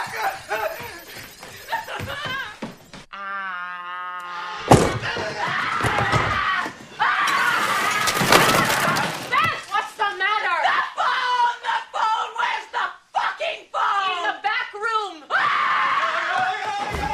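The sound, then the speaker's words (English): Frantic voices scream and shout for about three minutes while loud crashing, smashing noises burst out repeatedly, a chaotic scene of things being broken amid yelling and some nervous laughter. “Literally about 3 minutes of them screaming and just breaking things, and I had to like take a step back and pause.”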